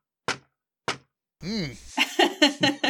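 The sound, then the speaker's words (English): Two sharp, hard raps of a sword cane topped with a little silver wolf's head against a door, evenly spaced about half a second apart, followed by a person talking. “You rap against the door.”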